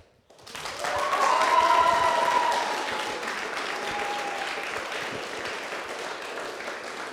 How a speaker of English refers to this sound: For the benefit of the audience, that wasn't spontaneous applause.